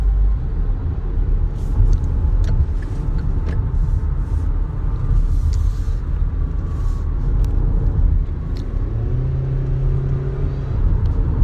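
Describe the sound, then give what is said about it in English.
Steady low engine rumble of a car driving through road traffic, loud throughout, with a deeper droning vehicle tone rising briefly near the end and no one talking. “Now, here I am trying to get up in traffic.”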